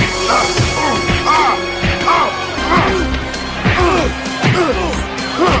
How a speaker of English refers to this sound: We get those horrible punching sound effects.